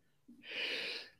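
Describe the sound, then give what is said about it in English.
A single loud sneeze: a short catch of breath, then a hissy, explosive burst lasting about half a second, with no talking. “Bless you.”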